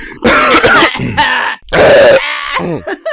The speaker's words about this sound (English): Having a slurp. Coughs out.